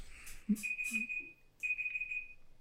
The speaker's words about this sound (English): Oh, that's got to be the timer, right? Wow, I never knew it made a noise. Well, we're on a fucking sketchy website and our fucking computer starts beeping. Yeah, I thought we were exploding.